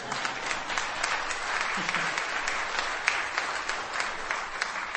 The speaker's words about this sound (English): You're clapping because it's over. But thanks.